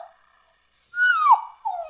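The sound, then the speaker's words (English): A dog whimpers in high, thin whines, a faint one first, then a louder drawn-out cry that slides down in pitch, followed by another short whine. No one speaks. “All right, which one pulls at your heartstrings more? The dog.”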